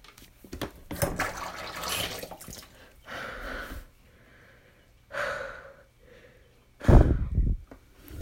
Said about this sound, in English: My God. I think I'm gonna need some water. Hold on, let me just pour myself a little piece of water.